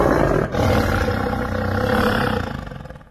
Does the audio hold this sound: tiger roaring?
yes